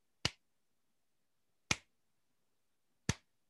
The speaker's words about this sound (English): Slow clap.